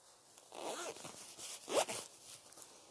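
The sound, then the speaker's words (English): A zipper is pulled one way and then back, two crisp, ratcheting strokes in otherwise quiet surroundings, with no talking. “Z for zipper.”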